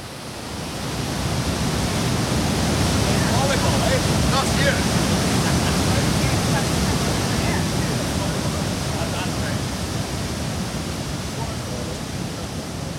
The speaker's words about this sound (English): Voices fight to overcome the sound of crashing water, and if you're not locked in, the roar of the falls can unfortunately melt into the deafening sounds of the city, urging you to continue your journey to escape reality.